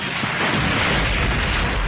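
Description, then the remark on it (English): A cruiser crashes into the stone side of a mountain: a massive crash erupts into a sustained, roaring whoosh of burning fuel, thick with deep rumbling low end and dense crackling texture, staying loud and steady for about two seconds with no voices. “The cruiser crashed into the mountain with a whoosh and roar of fuel.”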